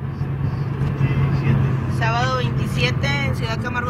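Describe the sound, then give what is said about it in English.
Steady low rumble and road noise from inside a moving car cruising along a highway on a sunny day through a dry, dusty landscape, with a woman starting to talk over the hum partway through. “And this woman, she just narrates as they drive along this highway.”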